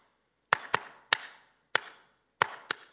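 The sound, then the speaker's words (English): Six sharp, smacking slaps land in quick, uneven bursts, some in pairs, each a crisp crack that fades quickly, as a woman slaps herself while driving a car on a night drive home. No one speaks between the hits. “I look over there, she's slapping herself.”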